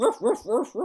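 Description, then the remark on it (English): Dogs barking in a quick run of four sharp, mid-pitched barks, evenly spaced and fairly loud, with no talking over them. “Be quiet, dogs.”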